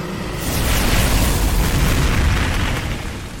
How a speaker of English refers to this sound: You hear the beats of wings. The roar.